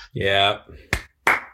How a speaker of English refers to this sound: It's got to be a slower clap than that, I think, you know. Yeah. That's better.